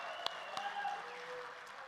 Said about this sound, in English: So here's what I want you to do while they're getting in the water. I want to prep your excitement. Ready? So when I say baptism, I just want you to clap and cheer. Come on. Good.